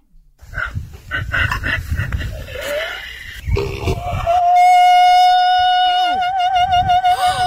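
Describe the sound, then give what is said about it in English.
A donkey named Harriet brays, greeting a man walking past, starting with harsh rhythmic gasping honks that rise into a long, loud, sustained high note with a wavering vibrato-like quality. “And then Harriet greets him by hitting some high notes.”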